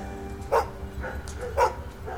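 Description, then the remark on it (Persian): A wild dog standing beside a man in a lit courtyard beyond large iron gates barks aggressively twice, sharp loud barks about a second apart, with fainter yelps in between and a low background rumble; no talking. “زیر نور حیات میتونستم مردی رو ببینم که کنارش یه سگ وحشی ایستاده بود و با عصبانیت واق میزد.”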